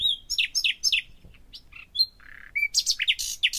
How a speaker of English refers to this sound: I had started thinking about the origin of birdsong. So whether there'd be any fossilizable remains that could tell us about how bird song evolved.